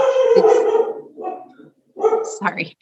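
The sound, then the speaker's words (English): A dog barks loudly, its first call drawn out and whining, then after a short pause it lets out another burst of rougher barks, with voices around it. “That dog doesn't like chronic illnesses either.”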